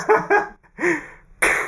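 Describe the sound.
A voice imitates gunshots with several short, punchy mouth bursts, ending in a sharp, hissy blast that cuts off abruptly. No words are spoken.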